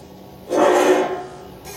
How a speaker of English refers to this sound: And a chair for me to sit in. Use the seat, as one would.